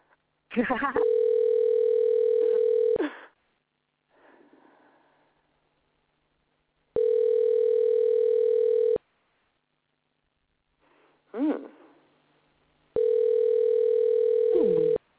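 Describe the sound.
A phone ringback tone sounds three times, each steady buzzing ring about two seconds long with longer pauses between, while brief voices murmur in the gaps.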